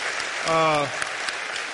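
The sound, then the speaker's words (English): Steady applause from a crowd fills the whole stretch, a dense patter of many hands, with a brief sustained voice rising over it midway before the clapping carries on, as Police Chief John McCohen of Monroe Township stands to be recognized. “Let's get a Lord a hand clap.”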